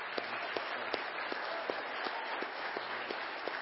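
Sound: audience applause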